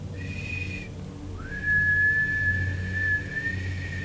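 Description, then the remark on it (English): A person whistles two clear tones: a short high note, a brief pause, then a slightly lower note that slides up into place and is held steadily to the end. “I'm sure that it's got to be some sort of shrieking, high-pitched whistle, too. That might descend from a higher tone. I can't even whistle that high.”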